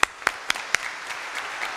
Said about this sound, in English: This is what I want us to clap about. We're going to have very soon a middle school boys group.